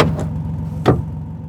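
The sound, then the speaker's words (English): A short mechanical clunk, then a sharper latch-like click a moment later, as the locked door of a blue Malibu car parked by the curb is unlocked with a button and opened, over a steady low engine hum. “You have to wait for us to press the button. Then you open the door.”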